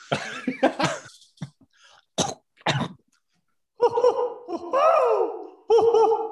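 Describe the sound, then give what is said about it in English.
A person coughs several times in short, harsh bursts, a quick cluster and then two separate coughs, followed after a brief pause by voiced, throaty vocal sounds. “This is a bad time to develop a cough.”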